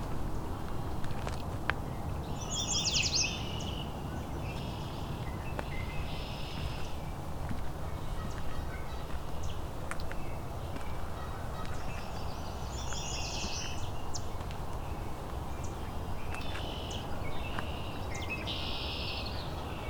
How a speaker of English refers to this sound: Lots of red-winged blackbirds.